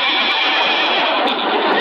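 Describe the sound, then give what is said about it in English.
A horse named Silver Moon, drawing a buggy, whinnies loudly: one sustained, shrill neigh that fills the whole short moment with no voices over it. “Oh, Doc, in that silly horse and buggy.”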